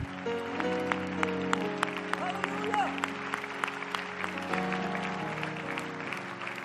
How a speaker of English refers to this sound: Clap your hands unto the Lord for the goodness of God.